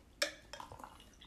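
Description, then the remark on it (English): Double Two Hearted beer, brewed entirely with Centennial hops, pours into a glass, starting with a bright clink of glass and then a soft, bubbling trickle of liquid. It is quiet, and no one speaks. “And also, as we're pouring, they say they use 2.5 times the amount of Centennial hops.”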